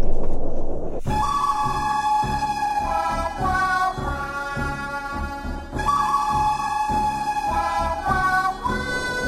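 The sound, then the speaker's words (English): A train rolls along the track with steady rhythmic clacking and a deep rumble, while a loud sustained horn blares over it for most of the time; no one speaks. “Quit, you're getting too close to the train.”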